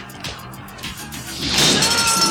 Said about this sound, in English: Whoa! Shatter gun. Was that a gun? Yeah, that was a gun. He shattered that shit.